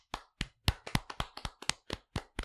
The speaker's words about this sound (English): I'm going to clap right back. That was awesome.